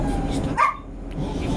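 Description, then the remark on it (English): A single sharp dog bark rings out near the middle, loud, over a steady low background murmur. “Yeah, the dog agrees with me.”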